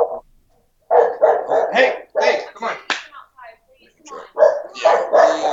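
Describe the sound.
A person's dogs, just back, bark outside in a run of short, sharp bursts, overlapping with the person speaking briefly to them.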